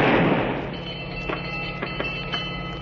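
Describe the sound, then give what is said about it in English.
A single blank warning gunshot, fired to make a ship halt for search, bursts out at the start, loud and broad, its boom fading over about half a second into a steady low mechanical hum with a few faint knocks. “That was a blank, a warning.”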